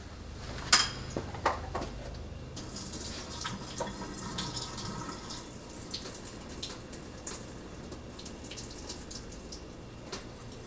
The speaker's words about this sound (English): All right, so here we go. The 4 minute timer is up. I'm gonna drain the water here.